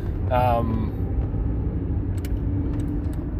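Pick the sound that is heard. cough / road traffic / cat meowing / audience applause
road traffic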